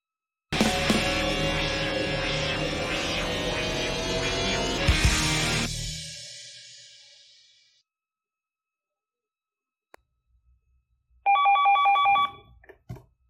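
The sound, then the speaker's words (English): A loud, dense musical burst fades out into silence, then a single short electronic telephone ring chirps near the end, clear, with no one talking. “Gone should be the days where you get a phone call that interrupts what you're doing.”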